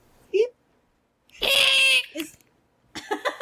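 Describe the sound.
A voice imitates the shrill, raspy screech of a shriveled, old, green githyanki man, one loud strained burst of about half a second, with brief vocal noises before and after.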